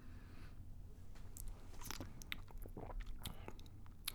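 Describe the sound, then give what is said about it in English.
Wet mouth sounds of someone sipping gin straight from a rosy-colored bottle: a few soft slurps, lip smacks and small clicks over a quiet background, with no talking. “Let me give it a little sip out of the bottle, this gin.”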